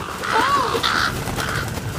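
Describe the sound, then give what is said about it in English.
Rooks caw in harsh, raspy bursts as a flock swoops low through the rain, about three rough calls in quick succession, loud and overlapping against a steady noisy background, with no voices. “The rooks are driving us like sheep to where they want us to go.”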